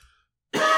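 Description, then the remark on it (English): A single loud cough bursts out after a moment of near silence, harsh and raspy, with no talking around it. “I need a cough drop.”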